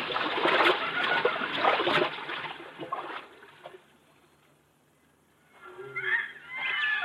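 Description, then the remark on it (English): Water sloshes and splashes as people wade across a river no deeper than their hips, a heavy churning burst at first, a brief lull, then more splashing strides toward the end, with no talking. “We can cross the river here, Buona.”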